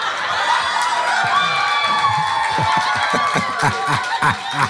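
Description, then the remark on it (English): A crowd cheers and whoops loudly and continuously, with excited shouts and scattered laughter rising above a dense, steady roar of many voices. “You have no idea why there's people cheering.”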